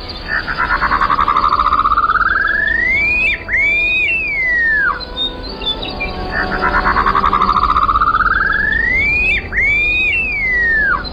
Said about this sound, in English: This may or may not be the intention of the upland sandpiper's call, but part of it does kind of sound like a wolf whistle.